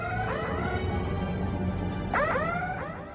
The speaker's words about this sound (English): Which is the shuttle bay doors open sound effect from Star Trek The Next Generation.